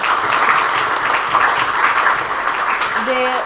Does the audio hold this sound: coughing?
no